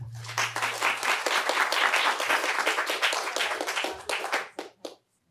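A crowd applauds a group of speakers after their talks, with dense, sustained clapping for about four seconds, then it thins to a few scattered claps and stops. A low steady hum sits underneath at the start.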